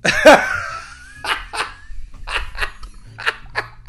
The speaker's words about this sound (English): It's a dog. It's going to bark sometimes. All right, let's be reasonable. The barking went a bit out of control, didn't it?